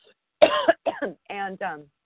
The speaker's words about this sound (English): I'm so sorry, ladies. I don't know why. I've got such a bad cough.